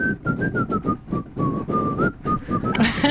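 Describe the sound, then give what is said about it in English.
A man whistles a short melodic tune, the notes sliding and wavering over a few seconds, with a brief rustle near the end. “I begin whistling.”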